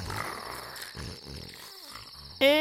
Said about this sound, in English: Is that their snoring? Yep, mom's asleep.